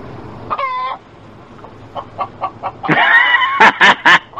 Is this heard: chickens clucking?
yes